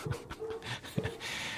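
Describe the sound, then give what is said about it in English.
A dog barks at a man outside, giving a few short, sharp barks and yelps in quick succession, fairly loud, with a steady background hiss and no talking. “my dog is barking at the male person.”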